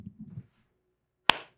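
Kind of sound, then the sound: human body sound, hand clap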